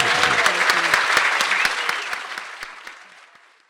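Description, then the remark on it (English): A live audience at a Byron Writers Festival 2019 session applauds and cheers a panel in a dense wash of clapping, with a few voices rising over it at the start, before the clapping thins and fades away over a few seconds. “Give them a great big cheer.”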